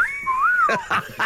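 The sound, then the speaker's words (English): A single clear wolf whistle in a studio swoops up and then slides down, followed by a few short bursts of voice or laughter. “Normally it doesn't make it through that, the wolf whistling you in the studio, but sometimes it does.”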